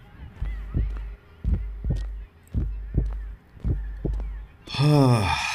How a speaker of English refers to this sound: It's time to head down the Siri Road. Why don't we jog for a little bit down the steps of Siri Road? That should get the heartbeats up and running.